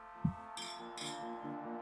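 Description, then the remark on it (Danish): Champagne glasses clink together in a New Year's toast, two bright chiming strikes close together, their ringing tones hanging in the air. Fairly clear, with no talking. “Skål, drenge. Skål. Skål. Og godt nytår.”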